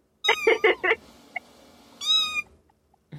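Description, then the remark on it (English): Cats meow in a quick burst of four short calls, then one longer drawn-out meow after a brief pause, clear with no talking. “And that's the end of Meow Cats, what I call Meowzik.”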